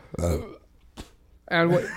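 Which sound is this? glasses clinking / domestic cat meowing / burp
burp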